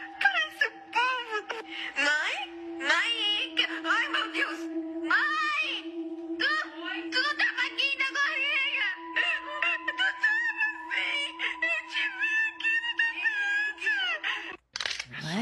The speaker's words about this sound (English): So I got something screaming down there.